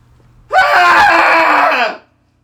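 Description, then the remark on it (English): A loud, sustained cathartic scream from several voices together, starting abruptly after a three count and holding steady for about a second and a half before cutting off, with no talking around it. “Let's do a cathartic scream together.”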